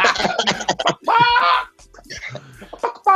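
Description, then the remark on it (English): A voice imitates a chicken clucking, loud, with a run of short choppy bursts, a drawn-out squawking cry, then a few more clipped clucks. “They come like Marga chicken. Cluck, cluck.”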